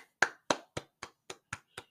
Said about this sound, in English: But for the time being, I'm going to give you guys a round of applause.